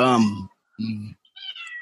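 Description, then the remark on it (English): A cat meows three times in quick succession, fairly loud, the last cry higher and thinner than the first two, with short silent gaps between them. “The cat does not agree at all.”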